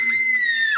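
A short, loud, high-pitched scream, held steady for under a second before trailing off with a quick downward drop in pitch at the end. No talking.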